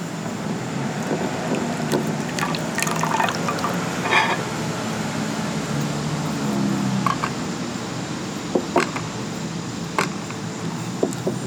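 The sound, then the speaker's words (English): Hot, just-boiled water is poured steadily from a kettle into a cup for tea, a continuous gurgling stream, with a few soft clinks of ceramic near the end and no voices. “We just boiled this water so it's hot.”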